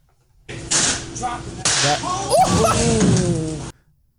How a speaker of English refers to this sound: That was the can explosion.